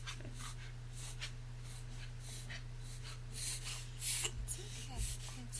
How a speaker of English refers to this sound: Just want to say thank you, sir, for your continued support as my dog is going through asthma underneath my feet. Here, let's just take a moment.